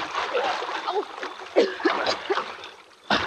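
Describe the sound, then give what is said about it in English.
Water churns and splashes continuously as someone wades across a ditch about 20 feet wide, with heavier sloshing bursts near the middle and a sharp splash at the end. Faint voices sound underneath. “I will not go into the water.”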